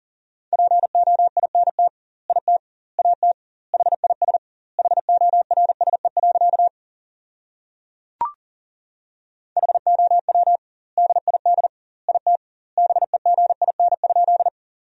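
Fast Morse code at 40 words per minute sending sentences made from the 300 most common words, with double word spacing: a single steady mid-pitched tone keyed in rapid dots and dashes, grouped into words with long pauses between, plus one sharp click in a gap.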